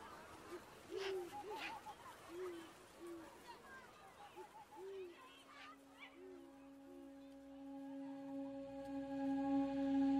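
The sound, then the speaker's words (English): A series of short, low owl hoots repeats at a steady pace, moderately loud, over a busy background of chirps and noise, before giving way to a sustained droning tone. “Owls are predators.”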